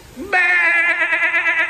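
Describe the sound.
A human voice imitates a sheep's bleat, a single loud, sustained nasal "baa" with a wavering tremble after a brief rising lead-in.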